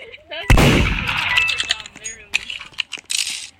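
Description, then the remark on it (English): A loud, sharp blast from a video game gun bursts out and rings off, followed by scattered cracks, clinks and clattering game sound effects with bits of talk underneath. “Oh my god, gun. Who keeps grabbing the gun?”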